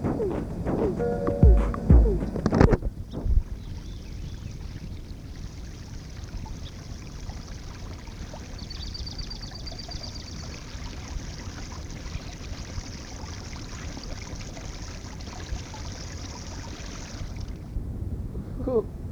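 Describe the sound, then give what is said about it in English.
A brief burst of voice gives way to a steady, hissing stream of liquid, like someone urinating, pouring and trickling continuously for about fifteen seconds before stopping abruptly. “I feel so much better after doing pee-pee.”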